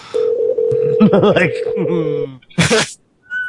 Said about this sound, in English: Just hears the phone just fucking going off. What, I wonder what this is like. This is to like hear a place just get called over and over.